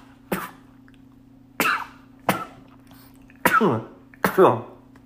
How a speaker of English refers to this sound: Jeez Louise. Thank you if you said bless you, just out of the pureness of your heart, even though this is a podcast. Appreciate it. But anyway, I know that's bad content to sneeze, but this whole episode is bad content.